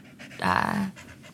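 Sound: dog panting heavily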